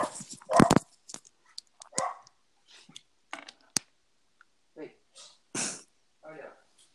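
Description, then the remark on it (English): A dog barks several times in loud, irregular bursts, with a strong cluster near the start and scattered sharper barks after. Faint vocal sounds and shuffling fill the gaps between. “There goes the dog.”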